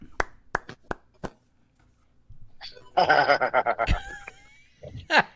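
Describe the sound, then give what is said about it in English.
Five sharp, crisp hand claps in an uneven rhythm, then a short pause before a burst of chuckling laughter and voices takes over. “You know, hand clap.”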